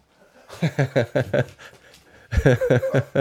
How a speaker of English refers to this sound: Shorty's my little guard dog. That's the beagle. I sure hope y'all heard him barking.